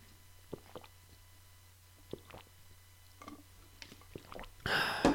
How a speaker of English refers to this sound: Five sips of coffee. Hopefully it'll do me well.